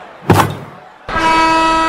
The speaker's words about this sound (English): There I beat the buzzer.